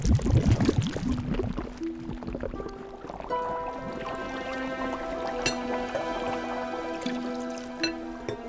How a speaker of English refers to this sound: A few small bubbles broke the surface, and then silence.